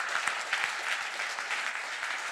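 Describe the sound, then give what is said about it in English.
An audience claps steadily, many hands producing a dense, continuous patter of crisp slaps at a moderate level, with no voices standing out. “You can clap if you've been blessed.”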